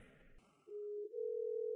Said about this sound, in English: I think we're ringing.